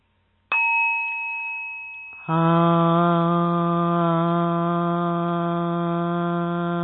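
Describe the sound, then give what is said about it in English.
A bright chime rings out and fades, then a group of voices enters together with one loud, steady hum, held unbroken on a single low pitch until the end. “Seven times we're going to chant hum to give her the energy.”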